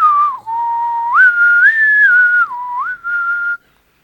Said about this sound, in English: For like 3 seconds, I was like, is he about to whistle something profound?